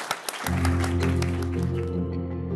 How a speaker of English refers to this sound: So thank you again. Huge round of applause. Thank you.